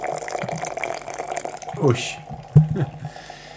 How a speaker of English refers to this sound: Do you go sidewall, slip down the side of the coffee? A bit of everything. I just want to get the whole thing wet.